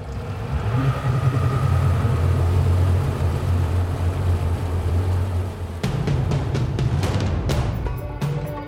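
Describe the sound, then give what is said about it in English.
A steady, loud motorboat engine drones with a low hum and rushing wash as the boat crosses the water on a short trip to Sir Benyes Island; near the end sharp clattering knocks and splashes break through the continuous roar. “Just a quick boat trip later, I've arrived on Sir Benyes Island”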